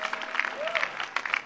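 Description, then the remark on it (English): A church audience claps together in dense, steady applause as a clap of praise to Jesus during an evening testimony service, with scattered voices and a brief whistle-like tone rising above the crowd noise. “Give Jesus another clap of praise.”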